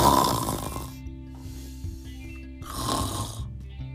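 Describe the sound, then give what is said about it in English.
Loud, rasping snores from Milo, a cheeky monkey who is asleep, repeat in a slow rhythm, each a long noisy inhale with a low rumbling buzz, separated by quieter breathy exhales. No one speaks. “Milo is still asleep. He must be tired from all his adventures.”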